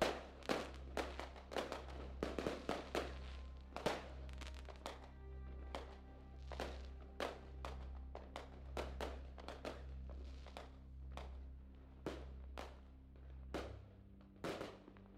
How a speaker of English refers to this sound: Yeah, you scurry up into the tree and begin to demorph, and as you finish your morph to Owl, you take off into the lit sky as the fireworks are still going off.